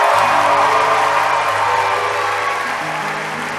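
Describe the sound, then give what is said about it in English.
An audience claps loudly and steadily for Jesus after a prayer for healing, in a dense, continuous wash of applause, with faint low sustained tones underneath; the clapping eases off slightly toward the end. “And give Jesus the loudest clap you can give.”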